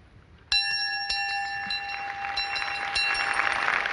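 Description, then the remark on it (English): The pilgrim bell, symbol of the Eucharistic Congress in Dublin, Ireland, is struck and rings out with a clear, sustained metallic tone, followed by a few lighter strikes as the ringing lingers over a building background hiss. No one speaks. “The symbol for Dublin is a bell. The pilgrim bell visited every diocese in Ireland carried by the faithful.”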